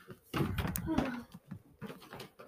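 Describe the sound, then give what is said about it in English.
A door creaks open in a short, harsh, grinding burst with a drawn-out groaning tone at the end, followed by faint voices and shuffling. “Creaking noise!”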